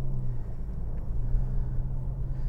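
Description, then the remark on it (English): A car engine starting up in a garage runs with a steady, deep idling rumble and a low droning hum, continuous throughout with no voices, sounding enclosed. “So I start up in the garage, which I don't like to do because my brakes are all stiffened up.”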